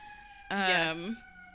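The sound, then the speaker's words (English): An emergency vehicle siren lets out a short, loud blast outside, holding a rising tone for about half a second before cutting off, over a steady background hum. “Ooh, first siren of the episode.”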